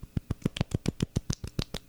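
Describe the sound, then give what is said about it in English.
A quick, soft golf clap: about a dozen light, evenly spaced hand claps in a steady rhythm, polite and subdued, with no voices. “Oh, wait, we should get that golf clap.”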